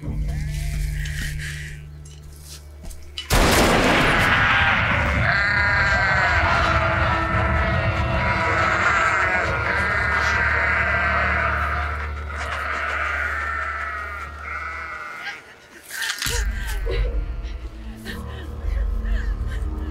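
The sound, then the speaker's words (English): A goat lets out loud, long, wavering bleats that carry on for several seconds, followed by a shorter cry near the end, over steady background noise. “Goats are creepy anyway, but I don't know. Goats are just being goats.”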